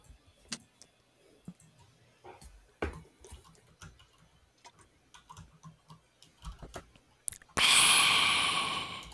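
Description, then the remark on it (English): Sounds of someone drinking water: soft mouth clicks and quiet swallows for several seconds, ending in a loud, breathy exhale of satisfaction. No one speaks. “Delicious. Nom nom nom. Water is the essence. Nom nom waters.”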